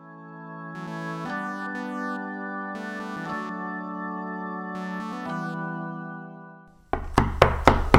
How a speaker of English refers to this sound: You've woken by a rapid knocking at your door. When you answer, it's the police.